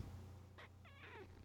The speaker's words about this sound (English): He's a good cat, too. Come closer to Mike. Purr in microphone.